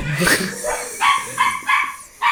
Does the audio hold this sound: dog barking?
yes